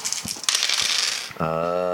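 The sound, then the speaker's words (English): Dice clatter and rattle across a hard table for about a second, a quick jumble of clicks, before a voice starts speaking; the dice are being rolled for a religion roll in a game. “So you walk over to the one crate that's been punctured, and since you're the zealous one, make a religion roll. I can't reach all these dice. They're everywhere.”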